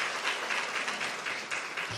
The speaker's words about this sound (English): oh, we're going to give a clap for her? Sure. She deserves it. She's been working hard.